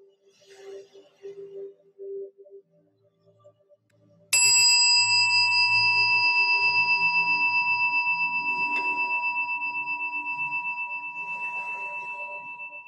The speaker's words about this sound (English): Allowing the sound of the chime to call you back from your meditation, continuing to feel the radiant warmth, the beauty, the awareness of the fullness of the life that you have.